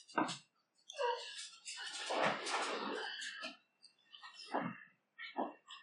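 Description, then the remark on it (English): A dog barks and yelps in a quick flurry, with a longer rough, noisy stretch in the middle and two short, sharp barks near the end. “the pod dog made noise.”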